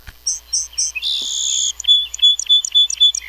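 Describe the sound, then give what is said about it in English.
A recorded song sparrow song played from a bird-call book: three clear opening notes, a buzzy trill, then a quick jumble of bright chirps, loud. No one speaks over it. “This is a song sparrow, and you just hit the thing.”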